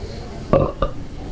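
A short, throaty belch from a North Carolina native rumbles out, followed a moment later by a second, briefer burp. Both are fairly loud against a quiet background, with no talking.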